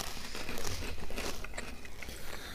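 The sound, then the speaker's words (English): Crunching as someone bites into a crisp, crustless, salty mushroom-flavoured snack, a steady run of dry crackly bites and chewing lasting a couple of seconds with no talking. “And they've had the crusts cut off. So methinks they're going to be extra crunchy.”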